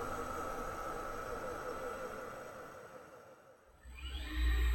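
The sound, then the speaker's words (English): The motors of a six-legged robot, moving its legs up and down and back and forth, whir in a steady, grainy mechanical hum with a thin whine on top; the sound dips briefly, then surges back with a rising whine and a heavy low rumble. “You'll hear those motors moving the six legs of the robot up and down, back and forth in front of the robot.”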